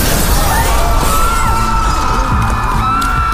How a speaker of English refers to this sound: Suddenly, the glass skylight above them shattered as a group of warriors dropped in on the startled crowd.